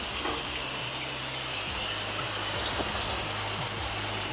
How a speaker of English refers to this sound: I can't believe I'm recording this in a freaking shower.